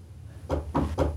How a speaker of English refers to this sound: Our exchange is preempted by a tentative knock at the door.